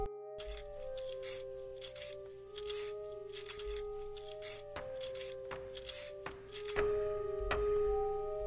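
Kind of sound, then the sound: tool, pencil being sharpened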